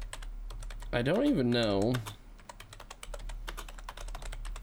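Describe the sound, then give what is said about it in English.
Rapid, uneven clicking of computer keyboard keys runs throughout, steady, with a brief spoken phrase cutting in near the start while the typing continues underneath. “I'm typing all this bullshit in and it won't even let me fucking look for it.”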